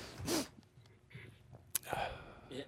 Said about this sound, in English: Oh, sorry, I didn't realise. I'm snorting. Taking a break. I'm having a little bit of a cough in the back here.